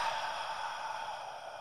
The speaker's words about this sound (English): Okay, you ready? You can do this wherever you are. Keep your eyes open if you're driving, but whatever else you're doing, just take a deep breath in. One, two, three. And then breathe it out.